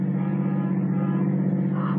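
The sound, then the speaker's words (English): A steady, droning car engine hums at a constant level, like riding inside a moving vehicle, with a low rumble and no speech. “Stop the car.”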